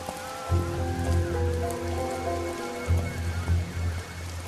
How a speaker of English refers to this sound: Remember this, it's still chucking it down, yes.